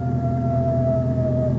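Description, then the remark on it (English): A single long, wavering coyote howl holds a steady mid-pitched tone and sinks slowly lower, carried over a constant low rumble, with no other voices. “What's that? Coyotes. Ever heard them before?”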